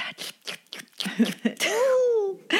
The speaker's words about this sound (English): Hey. That coworker that sits next to you chewing very loudly or sipping their coffees.